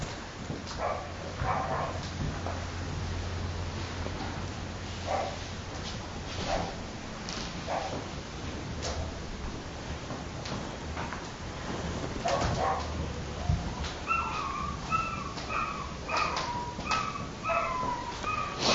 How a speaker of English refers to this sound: Little dog's usually on the balcony on the house next door. Don't know what it's doing. Everyone listening at home, I believe no animals are being tortured for the poor guy.